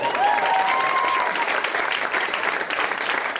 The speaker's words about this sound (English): Look at that shirt. Clap for that shirt.